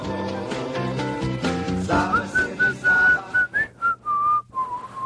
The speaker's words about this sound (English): Can I get some reverb in my whistle?